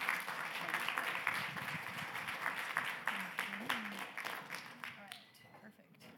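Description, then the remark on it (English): A crowd applauds speakers being brought up on stage to take their seats, with dense, steady clapping that gradually thins and fades toward the end, with a few faint voices murmuring underneath. “Let's give them a round of applause so they don't feel awkward.”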